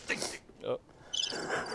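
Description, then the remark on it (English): Crickets chirp in a short, bright burst, break off briefly while a voice murmurs, then chirp again steadily. A canned, moderately loud effect suggesting an awkward silence. “Yeah, leave it with the crickets.”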